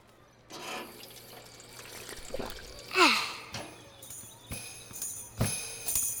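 A water fountain runs with a steady hiss as someone drinks, with a few slurps and breathy gasps between sips.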